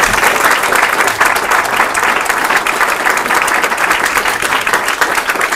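An audience applauds steadily throughout, a dense, loud wash of many hands clapping at once with no pauses or voices rising above it.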